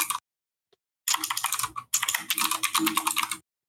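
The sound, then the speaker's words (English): Rapid clacking of a computer keyboard, fairly loud, in two dense bursts of fast keystrokes separated by brief pauses, with no voices. “Could you hear my keyboard? Yes, I can always hear your keyboard.”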